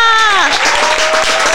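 An applause sound effect used as a show's signature: a loud, steady burst of crowd applause lasting under two seconds. A falling, sliding tone rides over the start and then settles into a held note beneath the clapping.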